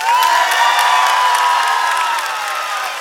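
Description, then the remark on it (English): A large crowd, asked to clap, yell and scream, does all three at once, a loud sustained roar of cheering and shrieks with scattered applause that fades slightly toward the end. “I want you to clap, yell, and scream.”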